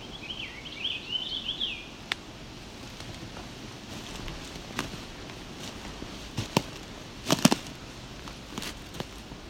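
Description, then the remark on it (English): A short, fairly faint warbling song of a purple finch singing in a tree rises and falls near the start, followed by scattered crackles and snapping noises in a quiet outdoor setting. “More sounding more towards purple finch in my ears.”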